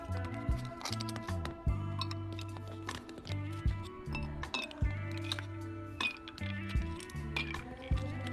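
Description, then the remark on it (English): Four bright glassy clinks ring out at uneven intervals as ice cubes drop into coffee in a mason jar, fairly crisp over steady background music. “Let it cool a bit and then add 4 ice cubes into the coffee.”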